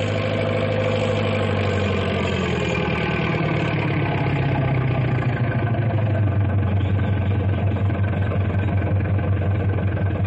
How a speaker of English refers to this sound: Oh, who's Big Brute? That big double caterpillar tractor is Big Brute. That is a monster piece of machinery.